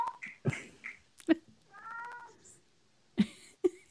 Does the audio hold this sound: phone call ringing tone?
no